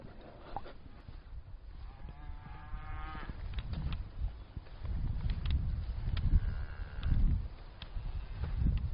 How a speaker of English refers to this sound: Just passing a field full of black cattle. Lots of young calves with them. They all seem a little bit excited.